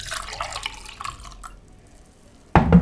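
Water splashes and trickles as it is poured out of a glass, fading to near silence before a sudden louder splash near the end; no voices.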